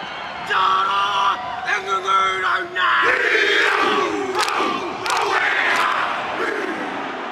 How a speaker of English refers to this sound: just waiting for the French to peel off the tracksuits and receive the challenge of the haka. Before each match, the New Zealand national rugby team, the All Blacks, perform this dance where players stomp, chant, and beat their chests and thighs.